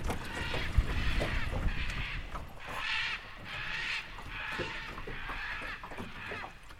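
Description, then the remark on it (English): A pair of scarlet macaws flying fast overhead above a river squawk loudly, harsh raucous calls repeating in a steady series of about seven bursts over a low, constant rumble. “I jump up, almost lose balance in the boat, and whip my head around just in time to see a pair of scarlet macaws right overhead, belting out a loud squawk.”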